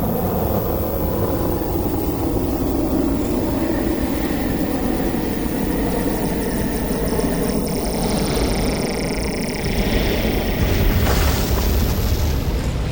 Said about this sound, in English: And engines powered, the rocket ship slowly rose into the air, wobbled its way forward.